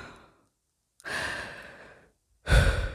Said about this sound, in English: Oh, I got yawns, y'all. Excuse me. I've been up for a while, but I've just been busy.